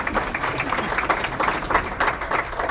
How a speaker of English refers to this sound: Next up, a representative from First American Title. Claps.